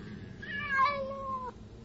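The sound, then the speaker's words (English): A single drawn-out cat meow, about a second long, rises slightly then slides downward before cutting off, heard clearly over a low background hum. “Do 7 cats make me crazy?”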